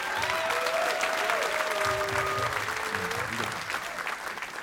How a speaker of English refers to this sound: We're going to bring these guys back up here, but if you guys can just give him a round of applause real quick.